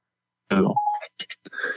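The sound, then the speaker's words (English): The Siri voice assistant's activation chime from a phone on a desk, accidentally triggered by speech: a brief electronic tone with a muffled onset, followed by a few short, clipped bursts of sound. “Okay, so I have my phone on my desk right here, and as I'm saying these two series, I hear the little doo-doo. Apparently, I triggered Siri just now.”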